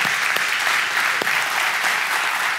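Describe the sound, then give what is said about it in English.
A crowd applauds steadily at a church service, honoring the lead pastor: a dense, even wash of many hands clapping at a constant loud level with a few sharper individual claps standing out, no voices over it. “Can you guys join me in giving him a round of applause?”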